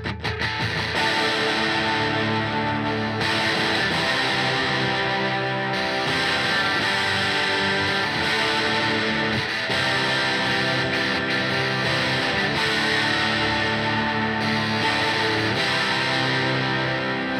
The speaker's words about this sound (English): I also tried to recreate at home some of that ocean waves crashing on the rocks kind of sludgy chorus guitar I'd picked up on in the studio.